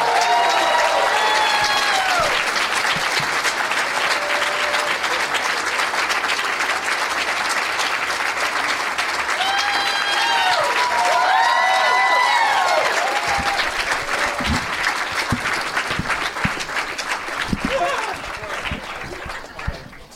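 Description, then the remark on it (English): An audience claps loudly and steadily for about twenty seconds, welcoming comedians Aaron Kleiber, Josh Wolf and Brian Redban as guests, with whoops and rising cheers mixed in, before the applause thins out near the end. “Please give a big, warm welcome to Aaron Kleiber, Josh Wolf, and Brian Redban.”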